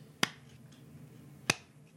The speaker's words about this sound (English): Classic slow clap.